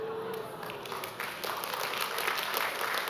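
A crowd breaks into steady applause at news that a man found his lost AirPods, a dense wash of many hands clapping that holds at an even, fairly loud level for a few seconds, with no voices standing out.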